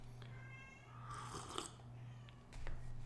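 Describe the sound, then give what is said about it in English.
A cat meows a few times, faint and muffled, outside a closed door, over a steady low electrical hum with no talking. “Can you guys hear my cat? He's meowing outside the door.”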